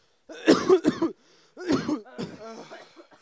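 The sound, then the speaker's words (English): A few harsh coughs and throat-clearing sounds from more than one person, in two quick bursts separated by a short pause, with a wheezy, strained cough trailing at the end. “Guys, we're coughing.”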